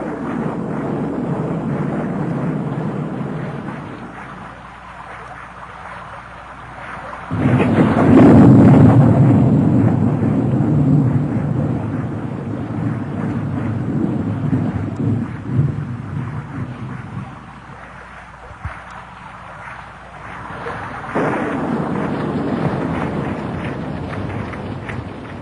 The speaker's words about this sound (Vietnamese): Trên mái đã nghe thấy những tiếng lộp độp của những hạt mưa thưa. Càng lúc tiếng lộp độp càng mau hơn, thỉnh thoảng vẫn có những làn chớp lóa mắt kèm theo những tiếng nổ lúc xa lúc gần.